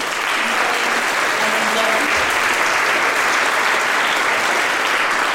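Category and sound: crowd, round of applause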